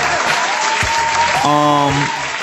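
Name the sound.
crowd applause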